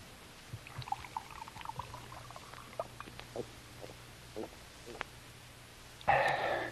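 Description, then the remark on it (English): Scattered light clinks and knocks, then near the end a short, bright, fairly loud splash of water being poured into a glass for a torpedoed seaman who asked for a drink. “Could have a drink of water, sir. Certainly. Right here.”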